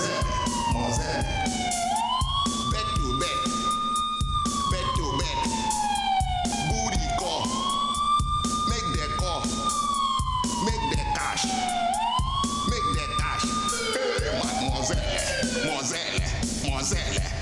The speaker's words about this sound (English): He's encouraging this, but there's clearly police tailing this. There's sirens everywhere.